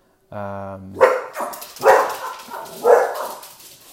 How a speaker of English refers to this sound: Dogs in the background.